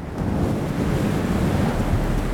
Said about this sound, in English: It begins on a dark night, when a fierce desert wind howled through the streets of Memphis, rattling doors and shutters.